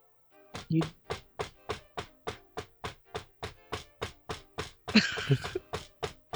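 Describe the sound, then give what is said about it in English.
A long, steady run of firm knocks on a closed room door on an upper floor, about seventeen evenly spaced raps in a row, with a brief burst of other noise near the end. “I knock on the door.”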